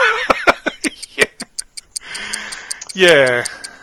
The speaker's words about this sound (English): Anyway, I do hear the sound of ticking, which could be...